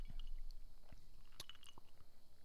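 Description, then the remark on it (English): A quiet sip from a drink: a few wet mouth clicks and a brief slurp, then swallowing sounds, with no one talking. “That's a man sip.”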